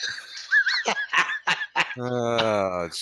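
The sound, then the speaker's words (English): Several short, choppy laughing bursts give way to a loud, sustained buzzy fart lasting about a second, steady in pitch. “I just farted too.”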